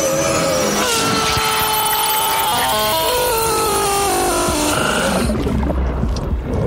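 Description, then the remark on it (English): A film sound effect: a harsh, noisy scream that breaks up into stepped, warbling digital tones like a dial-up modem, loud throughout, before cutting off to a low rumble near the end. “Like, the scream goes all digital and like, turns to like a modem noise.”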